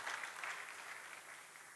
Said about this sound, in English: Let's give the Holy Spirit a round of applause. Thank you, Lord.